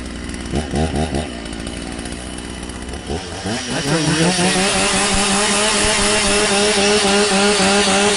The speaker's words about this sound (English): That's actually a chainsaw. That's the chainsaw. It's third down.